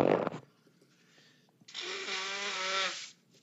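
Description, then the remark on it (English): A person who is sick blows their nose: a short sniff-like burst, a pause, then one long, loud, honking blow with a buzzy, slightly tonal rasp, ending abruptly. No talking. “Excuse me. To blow my nose.”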